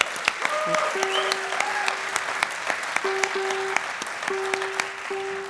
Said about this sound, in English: Thanks so much, everybody. We had a great time here. I want to get a big round of applause for all the great folks who put this incredible festival on that goes on for weeks.